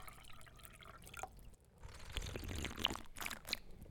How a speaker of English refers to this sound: Pour a glass of wine if it would help. Keep you amenable.